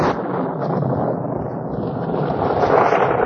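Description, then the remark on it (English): A sudden cloudburst: a steady, dense roar of heavy rain pours down without pause, a broad hissing wash that swells slightly louder toward the end, with no voices heard. “Goodness, it's a cloudburst.”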